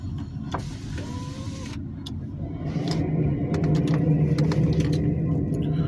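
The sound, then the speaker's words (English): A car's steady low rumble fills the cabin, with brief squeaks and clicks from noisy brakes cutting in over the drone, growing slightly louder toward the end; no one speaks. “My fucking car right now sounds like a bus. I don't know what it is with these brakes, but before the winter time comes, I might want to jump to that opportunity.”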